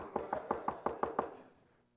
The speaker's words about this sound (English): In fact, in the parable, it says that the man gave it not to him because he needed bread or because he was his friend, but because he wouldn't stop knocking on the door.